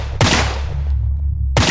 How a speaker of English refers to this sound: The broken creature flopped at Black Wolf's feet. He fired three more enhanced rounds into what was left of its exposed skull.